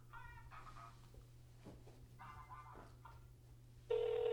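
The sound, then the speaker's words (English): A telephone rings over a call line as a call is placed to Adam Sandler's number, with short repeated tonal bursts against a steady low hum, ending in a sudden loud, sustained tone. “And the phone is ringing.”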